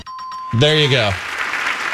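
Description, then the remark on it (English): A steady bell-like ding rings for half a second, then a loud vocal cheer swells and gives way to a wash of clapping applause that continues to the end. “Can I get a ding and an applause?”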